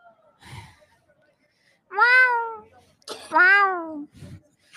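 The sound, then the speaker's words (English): A person being interviewed at the Met imitates a cat with two loud, drawn-out meows, each rising then falling in pitch, with a few short breathy sounds around them. “Look at her little handler nodded like he understands cat.”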